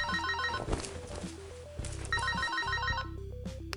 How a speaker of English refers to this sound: I cannot recall the last time I called a phone number that did not go to voicemail after so many rings.